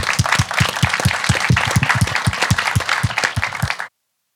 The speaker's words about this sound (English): It's been really great having quite an informal and conversation with you all. It's been a really nice way to hear about your projects, and I think we need to give them a round of applause.